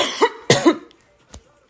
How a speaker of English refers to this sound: Sorry, I'm coughing off of e-vape juice. Yes, I've converted to vaping.